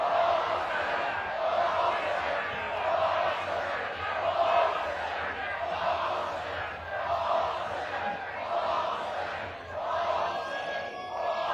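crowd screaming

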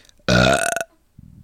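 burp

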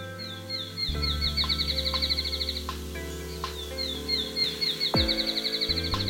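field sparrow song

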